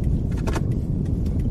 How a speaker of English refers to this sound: This is just a traffic nightmare. Okay, guy. You got your car double parked, triple parked. You're in the way.